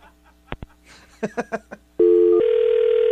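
Two sharp clicks and a few quick electronic beeps, then a loud, steady telephone tone starts suddenly and drones on without a break until the end.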